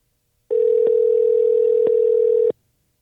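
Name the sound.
telephone dial tone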